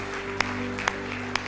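An audience at a worship service claps together in time in praise of God, three sharp, evenly spaced hand claps about half a second apart over a steady, sustained musical drone.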